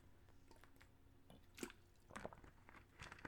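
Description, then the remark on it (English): Someone sips water, with a few quick wet slurps and mouth noises, then swallows, against a quiet background with no talking. “Matter of fact, let me get another sip.”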